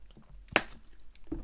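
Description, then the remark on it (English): A quiet sip of water with a brief wet gulp or swallow in the middle, surrounded by soft mouth and lip sounds and light rustling, with no talking. “So I'm just going to take a little bit of a drink of water.”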